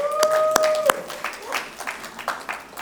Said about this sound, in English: Can you applaud these guys, please?